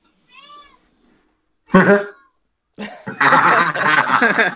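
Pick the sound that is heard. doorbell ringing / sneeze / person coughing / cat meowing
cat meowing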